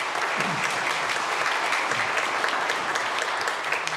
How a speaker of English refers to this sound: It's worthy of applause.